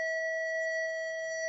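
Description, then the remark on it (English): A typical school-day bell goes off as a steady, unbroken electronic tone, a bright mid-high pitch held evenly for the whole moment, with no voices over it. “Typical school day bell going off.”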